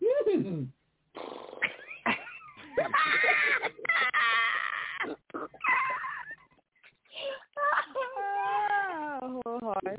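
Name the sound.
cat meowing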